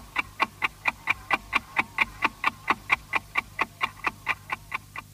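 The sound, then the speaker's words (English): A clock ticks steadily and evenly, about four ticks per second, each tick a crisp, sharp click, over a faint low hum, with no voices. It is the identification signal of Austrian public broadcasting by RAVAG, the Radio Traffic Company, used from 1924 to 1938. “The good old ticking clock, which was used between 1924, when public broadcasting started in Austria by RAVAG, short for the Radio Traffic Company, up until 1938, when...”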